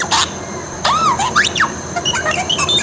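A parakeet chirps out a rapid string of warbling, swooping electronic-style beeps and whistles, fairly loud, imitating the chattering bleeps of the robot droid R2-D2, with no one talking.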